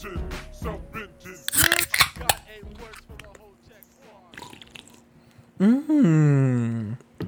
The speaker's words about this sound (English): Okay. That, ladies and gentlemen, is the sound of a couple beers being cracked.